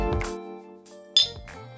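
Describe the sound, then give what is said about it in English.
Ice cubes clink and tumble into a large gin glass for a gin and tonic in two quick bursts, bright ringing tones with sharp attacks, fairly loud, with a brief quiet pause between them. “I have a bigger gin here, and it's just going to simply be some ice.”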